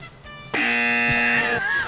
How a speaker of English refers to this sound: I can just keep my finger on the buzzer all night.